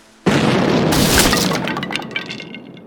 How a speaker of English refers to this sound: We heard a fuse going off. He turned and looked at me and I didn't check there yet. And he closed his eyes and an explosion went off.